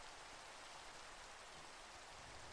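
Steady rain pours down in an even, continuous hiss, with no breaks or distinct drops standing out and no voices or thunder over it.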